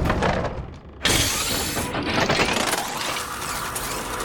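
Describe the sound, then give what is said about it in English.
Wooden lumber crashes into a spider-like automaton and shatters in a sudden loud burst, then a rough splintering clatter of breaking debris continues for a few seconds, noisy, with no voices. “It crashed into one of your spider things.”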